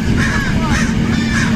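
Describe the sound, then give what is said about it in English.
Three harsh, raspy crow caws repeat at a steady pace over a constant low background rumble, moderately loud, with no talking; the territorial crows live at the top of trees in a park. “Crows are extremely territorial and have been attacking people and their dogs.”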